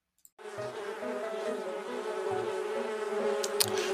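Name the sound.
bee buzzing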